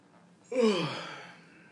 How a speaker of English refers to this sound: Sorry, the yawn. I forgot we were recording a podcast.